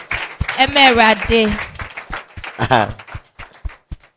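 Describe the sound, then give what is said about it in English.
An audience claps in sharp, uneven bursts in thanks to the Lord while raised voices shout and call out over the first half, then scattered claps carry on more thinly as the voices drop away. “Give the Lord a mighty clap of thanks.”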